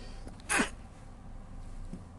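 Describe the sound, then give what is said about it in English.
A single sharp sneeze from a person with an itchy nose bursts out, brief and somewhat stifled as it is held back, followed by quiet with no talking. “So I'm about to sneeze.”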